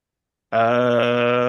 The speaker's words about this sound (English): Beat, she's breathing heavy and is mad.